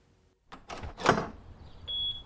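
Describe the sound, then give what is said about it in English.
A door is answered and opened with a quick clunk of the latch and a rushing, rattling sweep, followed by a thin, high squeak as it settles. “Brianna was still holding Hannah when she answered the door.”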